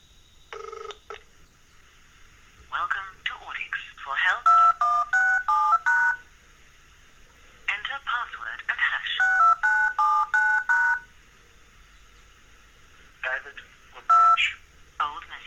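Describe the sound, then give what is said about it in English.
Quick bursts of touch-tone dialing beeps, several rapid tones in each burst, repeat three times, alternating with a voice speaking over the phone line, as an automated dialing sequence stored in a phone contact logs into a work voicemail system. “So I'm going to double tap on audio mail and you can hear it log into my voicemail at Vision Australia.”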